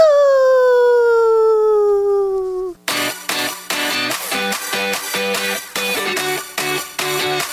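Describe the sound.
A person imitates a lazy wolf howl, one long, drawn-out tone sliding slowly downward for a few seconds before being cut off by loud, rhythmic music.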